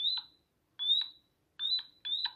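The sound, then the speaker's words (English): Four short, high synthetic chirps made by an automaton, in an uneven rhythm, each a quick rising electronic tweet like a small bird, clear against a silent background. “A small bird.”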